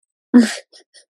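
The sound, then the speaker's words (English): A single short burp with a loud, low, throaty onset that fades within about a quarter second, followed by two faint, soft breathy noises. No one speaks. “Sorry, I had to burp.”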